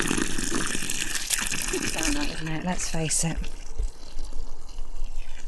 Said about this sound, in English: What I'm going to do is water the hole first.